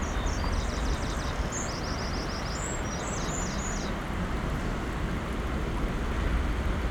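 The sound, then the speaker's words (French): A steady, rushing wind blows without pause far off and high up across an open clifftop, a dense low roar, while faint high chirps from a flying bird flutter during the first few seconds. “Au loin, plus haut, en haut, le vent qui nous espace”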